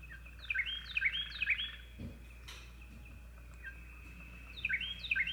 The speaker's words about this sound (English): Man, dude, that little racist bird. Yeah. It's like, screw the Jews, screw the Jews, screw the Jews.